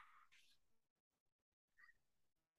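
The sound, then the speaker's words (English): A mini goldendoodle dog gives a couple of quick, high-pitched barks in the background, a short burst at the start and another a moment later, faint with quiet pauses between. “As the mini micro golden doodle barks in the Okay.”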